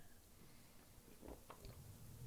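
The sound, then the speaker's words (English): A quiet sip of water by someone with a parched throat: a few soft slurping and swallowing sounds clustered in the middle, with no one speaking. “It's like right now my throat is a little bit parched. So I'm going to take a sip of this water.”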